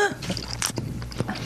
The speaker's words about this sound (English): I mean, I can feel the tentacles and stuff. Oh. You can feel the wings. The wings are tough to chew.